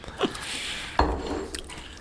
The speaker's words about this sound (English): He's crunching into the microphone.